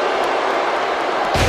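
A steady wrestling crowd roar fills the arena, then a single loud, sharp crash lands right at the end as Luger strikes Ravishing Rick across the forehead with a steel chair.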